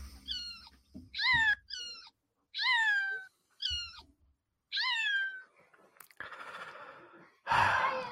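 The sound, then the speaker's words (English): A cat that has hidden meows over and over in short, high, falling cries, fairly loud, while a small child tries to get hold of it; two rough, breathy bursts follow near the end. No one speaks. “Our show starts this week with a small child trying to obtain a cat who's decided to hide.”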